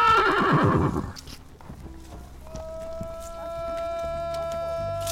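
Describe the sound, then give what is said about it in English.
A horse named Chang, excited about going home, lets out a loud whinny that trails downward, followed by shuffling hoof sounds as he prances around, and a steady, higher-pitched tonal call that holds on to the end. “He's prancing around like a jerk while I try to record.”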